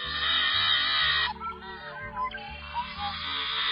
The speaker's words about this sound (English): It's today's Talkin' Birds featured feathered friend, Xanocephalus, the yellow-headed blackbird.